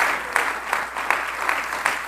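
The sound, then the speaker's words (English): An audience claps in praise to the Lord for thanksgiving, a dense wash of many hands with a steady beat of louder unison claps roughly every third of a second, sustained throughout with no talking. “Give the Lord a hand clap of praise for thanksgiving.”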